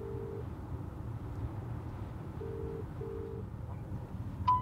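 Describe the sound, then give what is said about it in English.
A phone ringing tone plays through a handset as a call is placed on the way back from Adelaide: a brief burst, a pause, then a double ring, steady and moderately quiet over a constant low engine-like rumble. “But let's give him a call.”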